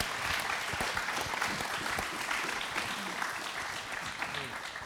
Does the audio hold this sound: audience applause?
yes